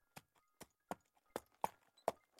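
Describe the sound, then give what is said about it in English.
Horse hooves clip-clop in a steady, unhurried rhythm, six sharp knocks over about two seconds with nothing else in the background. “Here, I'll see to your horse.”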